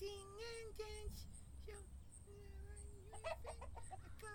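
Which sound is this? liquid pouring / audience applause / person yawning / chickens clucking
chickens clucking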